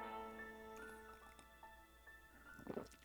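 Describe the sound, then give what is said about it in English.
A quiet, brief slurping sip of coffee near the end, with soft wet liquid sounds over a faint steady background hum and no talking. “Also, real quick, if we could, even though I just thought of this as I was taking a sip of my coffee”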